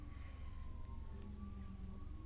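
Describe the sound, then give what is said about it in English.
Faint emergency vehicle sirens wail from outside, a steady drawn-out tone that drifts slightly over a low background rumble, with no one speaking. “The sirens are super going off.”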